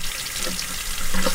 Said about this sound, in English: Since the guacamole has a lot of oil in it, we start with cold water and dish soap. So let's do some cold water rinse. She runs the shirt under the cold water.